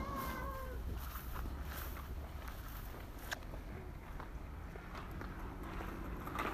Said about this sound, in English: The other thing I can hear is my own feet scuffing along through long grass.